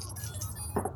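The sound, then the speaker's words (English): A brief rattle of dice rolled for a power score, tumbling across a hard tabletop, a quick burst of small clicking knocks that ends almost at once, with no voices. “So go ahead and roll your power, and I'll roll Shannon's.”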